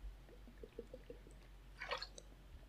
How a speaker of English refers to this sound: Sorry, I need some water here.